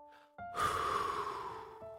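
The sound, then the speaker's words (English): A single slow, deep exhale during a breathing exercise done to fall asleep, breathy, swelling quickly and then fading over more than a second against a faint steady background hum. “I started trying some breathing exercises that I'd previously had success with in order to fall asleep. Deep breath.”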